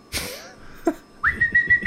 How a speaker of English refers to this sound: I can't whistle right now. You're trying to do the wolf whistle? Like, are you trying to do that?